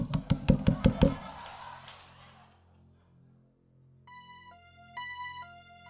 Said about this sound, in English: But just think about it. Somebody shows up to your house in the morning with the police knock.